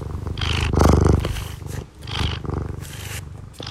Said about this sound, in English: He purrs when he's happy, but he also purrs when he's hungry and when he thinks he's about to get food. So I have a lot of questions about what's actually going on in his little body when he purrs. But I mean, listen to these good vibrations.